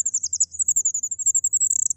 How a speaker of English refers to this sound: It's called an incubation call. She only does it when she's on her own with her eggs. And in fact, we have a recording of a fairy wren incubation call, so you can hear the sorts of thing they're doing.